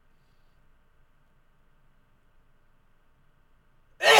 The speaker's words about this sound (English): Dude, I was looking straight up in the air, and I sneezed, and it hurt. It hurt my ribs. I've never looked straight up. I always sneeze down.